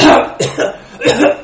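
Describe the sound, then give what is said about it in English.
Someone fakes a string of coughs, a few forceful bursts in quick succession with short pauses between them, delivered loudly with no talking. “I really just want to start, like get on the phone and start, like, pretend I was talking to someone and start coughing a bunch.”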